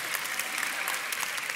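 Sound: applause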